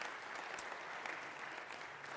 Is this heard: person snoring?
no